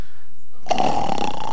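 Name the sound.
person imitating loud snoring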